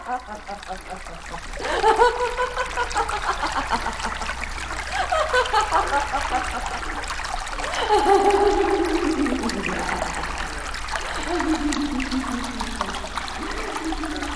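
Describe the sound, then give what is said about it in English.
Water trickles and gurgles steadily throughout as it keeps rising in a marsh in a forest, with swirling, rising tones drifting over the continuous watery wash at a moderate level. “And he is left alone in the wood with the water up to his waist. And as the water keeps on rising and rising,”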